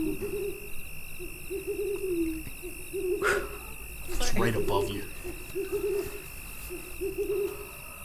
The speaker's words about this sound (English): You keep hearing the owl. Yeah, you just hear this owl just continually hooing and hooing. And it sounds like it's getting louder and louder.